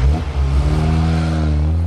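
A truck engine revs loudly as the truck drives away, a deep steady rumble with rising harmonics that holds strong for about two seconds, with no voices.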